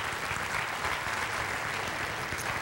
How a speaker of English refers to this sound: So y'all give it up for Casey one more time as he heads back.